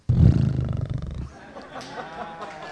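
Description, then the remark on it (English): A volunteer gives a horse impression: a loud, rough, fluttering vocal burst lasting just over a second, then trailing off into a quieter, breathy, wavering tail. “And I want you to give the best horse impression that you have ever given in your whole life.”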